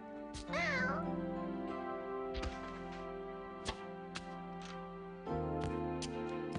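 A single wavering cat meow near the start, fairly loud, over a steady droning tone with a few sharp clicks and knocks scattered through the rest.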